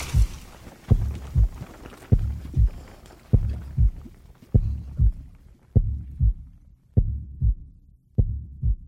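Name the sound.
beating heart sound effect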